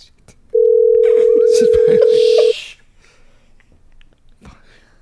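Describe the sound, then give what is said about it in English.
A single loud, steady ringback tone lasts about two seconds, the ringing heard on an outgoing phone call made at 9 o'clock on a Friday, with faint breathy noises around it and quiet line hiss after it stops. “She's screening that ish now.”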